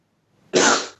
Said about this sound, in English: Sneeze. Sorry about that. Here we go. Oh, you can't sneeze just once. It's weird. You don't sneeze properly.